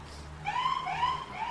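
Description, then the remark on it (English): A police siren wails outside, its tone rising and falling over a low steady hum, with no voices. “Is this what happens in Little Los Angeles? Yeah. It's like they run around with sirens.”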